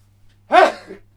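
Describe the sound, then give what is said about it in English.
A single sneeze bursts out sharply, loud and breathy with a voiced, slightly tonal edge, then trails off into a softer exhale. No one speaks around it. “Sneezing, drops down dead, slumped. Right on cue there”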